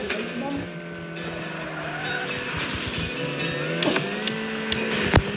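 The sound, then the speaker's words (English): A video game car with a V8 engine whines and revs steadily while tires skid and squeal, followed by several sharp, loud crashing impacts near the end as it crashes into a light post, flips up in the air and ends up on its side. “Well, I just crashed into a light post and it flipped me up in the air.”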